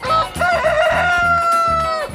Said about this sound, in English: About 700 cackling, clucking, squawking, crowing birds are lined up in rows of individual wire coops stretching the length of the building. There are some ducks, a smattering of geese, a few turkeys. But mostly, there are chickens.